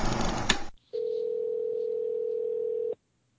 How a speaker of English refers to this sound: Thank God my phone worked. when it started ringing, the phone was just black. Like, it's ringing, but there was no screen to touch anything.